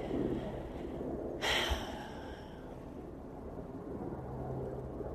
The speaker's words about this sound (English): There's another small plane flying by.